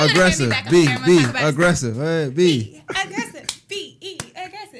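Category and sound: crowd, clapping and cheering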